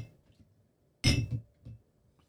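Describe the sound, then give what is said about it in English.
Glasses clink together in a toast, one bright clink with a brief ringing tail, followed by a softer knock a moment later. “Cheers to you. Cheers.”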